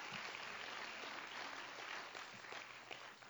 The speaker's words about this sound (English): Can you say praise the Lord? Oh, let's clap our hands to him right now.